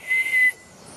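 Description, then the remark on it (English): A bellbird (El Pájaro Campana) calls in primary forest on a family farm in Costa Rica: one loud, pure, ringing note held for about half a second, then cut off, leaving quiet forest hiss. No one speaks. “We call it the bell beer, El Pájaro Campana.”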